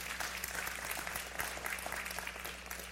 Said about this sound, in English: You can clap for that.